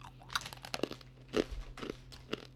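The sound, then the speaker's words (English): Crisp crunching and chewing of a hard, stale pretzel made with hemp heart protein, several sharp bites in an irregular rhythm with softer chewing between them, fairly quiet with a faint steady hum underneath. “Man, that's a crunchy crunch. Just too much crunch and then there's a chew in it. You hear that?”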